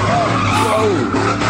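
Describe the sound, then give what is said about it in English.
A voice imitates a speeding car that threw a man, with a loud, wavering whoosh and rising and falling pitch sweeps, held for about a second and a half like a car zooming past. “Got thrown by a car. I mean, going like, fucking.”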